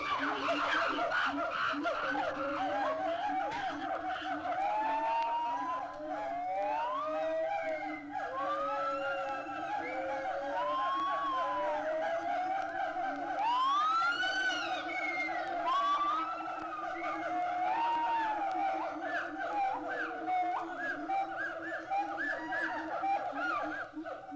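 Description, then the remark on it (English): A loud, continuous early-morning chorus of siamang gibbons, gibbons and chimpanzees at the San Diego Zoo, started by the chimpanzees' screams, with overlapping rising and falling whooping calls and shrill screams layered thickly over one another for the whole stretch. “And when the Siamangs join the gibbons and chimpanzees in an early morning commuter zoo, it wakes everybody up.”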